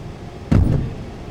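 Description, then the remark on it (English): A heavy thud as the trunk of a Honda CR-V is shut after a bag is put in, followed by a quick lighter knock, then a low idle background hum with no talking. “Do you want me to just throw this in the trunk?”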